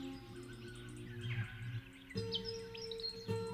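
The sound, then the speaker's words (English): Sustained, layered musical tones hold steady while bright, quick bird chirps and tweets flutter above them, shifting into a new chord partway through; original music composed from notated bird songs, following the birds' melodies. No one speaks. “is explaining why bird calls feature so heavily in the piece of music you're hearing now.”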